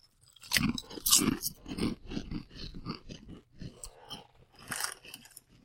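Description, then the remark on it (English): Loud, crisp crunching of kettle cooked chips being chewed, a rapid series of sharp bites and grinding crackles with brief pauses, no voices over it. “These are kettle cooked, for the record. Yeah. Much crispier.”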